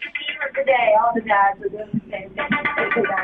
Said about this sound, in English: Listen, it's a phone. It's someone's cell phone.